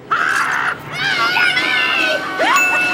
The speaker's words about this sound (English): Yeah, one of them, the woman in the polka dots, her frozen body wakes up and starts strangling him, right? Yeah, she wakes up and screams, and he screams, and we get... Is this our first scream take of season 6?